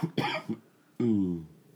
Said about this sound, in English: Real talk. Real talk. Real cough. Go ahead.